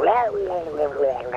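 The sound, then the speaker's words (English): A garbled, gurgling warble comes from a seashell used as a phone and held to the ear, a continuous wavering voice-like tone with a tinny, distorted quality, moderately loud and lasting under two seconds. “And you hear what sounds like almost static.”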